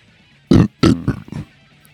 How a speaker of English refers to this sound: I just love that I can burp and it's loud.